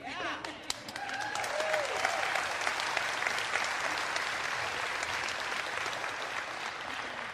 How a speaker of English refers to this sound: And you see how they all clapped on the beat? I was so proud.